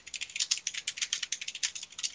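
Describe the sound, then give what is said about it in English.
Dice rattle steadily for a couple of seconds, a rapid stream of bright, clicky knocks with no talking over them, like dice being shaken and rolled, during initiative rolls in a tabletop game. “Now I need to roll some dice as well.”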